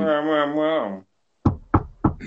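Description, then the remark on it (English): Three quick knocks on a wooden surface, evenly spaced, following a brief sustained vocal hum and a short pause. “That's me knocking on wood, just to make sure I don't screw ourselves over on this one.”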